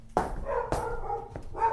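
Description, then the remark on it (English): A dog named Bessie barks several times in quick succession, sharp, each bark trailing into a short tonal whine before the next. “Bessie! Stop barking!”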